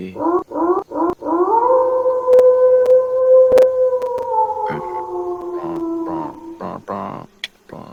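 A few short yelps lead into one long, steady howl that holds for several seconds, sliding slightly downward before breaking into rougher yips at the end. It's loud.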